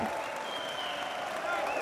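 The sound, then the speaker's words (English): A crowd cheers and applauds steadily, a dense wash of clapping and whooping that stays loud and even for about two seconds with no pauses. “Well, let me do the cheer.”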